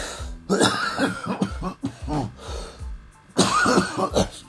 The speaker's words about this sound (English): Still not a corona cough. I still got phlegm. So everything's cool.